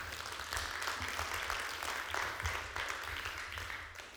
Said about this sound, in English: Ooh, come on, let's give him a good round of applause.